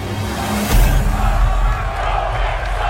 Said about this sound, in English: The crowd is really, listen to the crowd.